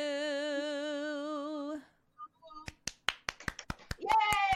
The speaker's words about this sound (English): Yay! A round of applause.